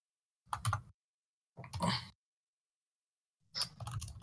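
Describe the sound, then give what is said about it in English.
Three short bursts of rapid typing on a computer keyboard, each a quick flurry of clicking keys separated by brief silent pauses. “Bang them fucking keys, son.”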